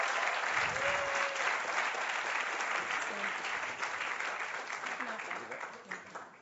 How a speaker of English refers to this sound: Let's just give God a round of applause, a bit of a cheer.